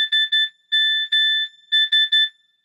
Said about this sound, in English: So it is the Sheikah Slate ping from Breath of the Wild. God. So as soon as you start playing it, you get the Sheikah Slate and like it tells you where you're going. You're blink, blink. Yeah. So you hear it the whole time.